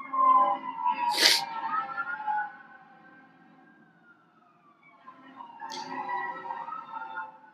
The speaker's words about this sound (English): It seems like there's always a siren when you're trying to record something. I'm going to let it go. Stand by for the siren.